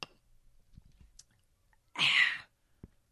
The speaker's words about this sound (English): That refreshing sip was for North Carolina Jen.